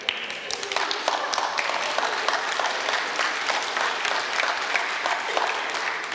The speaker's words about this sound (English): Isn't that good news? Don't you want to stand up and applaud Jesus right here?